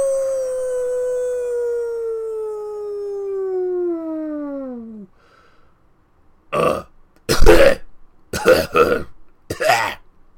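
A long, drawn-out howling wail slides downward and fades, then after a pause come four loud, harsh hacking retches in quick bursts, like someone coughing up a hairball.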